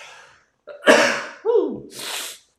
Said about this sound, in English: I just sneezed. Please forgive me.